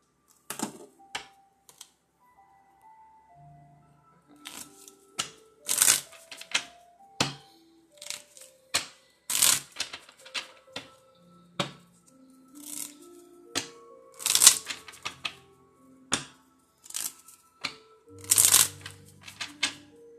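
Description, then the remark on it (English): A deck of cards is shuffled, crisp riffles and soft slaps arriving in repeated bursts with short pauses between them. Nobody speaks. “It's the shuffle for me.”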